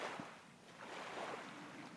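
Gentle waves rock a boat, lapping against it in a steady, washing murmur with soft swells, moderately quiet, with no voices present.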